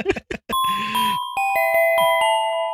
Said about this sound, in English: I don't know why I did the chime